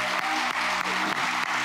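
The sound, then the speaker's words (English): An audience claps together in sustained, dense applause as a hand clap of praise to the Lord at the end of a church service, the clapping loud and continuous with a few brief dips, with no one speaking over it. “Well, let's give the Lord one more hand clap of praise today.”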